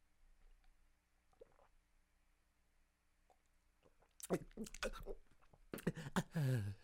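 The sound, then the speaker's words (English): After a few quiet seconds, someone takes a sip of a drink: a burst of wet slurping and gulping noises, ending in a short voiced exhale. “Let me take a motherfucking sip on this note too.”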